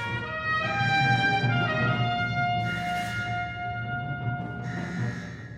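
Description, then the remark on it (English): A loud red alert alarm on a warship, sounded during an evasive maneuver, blares a steady, buzzy electronic tone with rich harmonics, flaring with a harsher burst roughly every two seconds. No voices are heard. “Sound the alarms. Red alert.”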